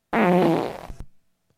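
A single loud, buzzy fart that holds for nearly a second, then sputters out into a couple of short pops before falling silent, with no voices.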